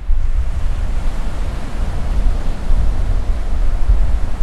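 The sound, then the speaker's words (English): Ocean waves breaking on a shore make a loud, steady roar of surf, with deep rumbling wash and constant hiss and no distinct gaps between breakers. No voices are heard. “I spent a lot of time in my childhood and adulthood growing up along the Jersey Shore, and so the sound of waves is ever ingrained in me.”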